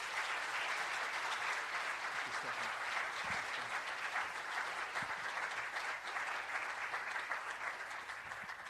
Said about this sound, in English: So thank you guys so much, and y'all can give them another round of applause as they go back to their seats.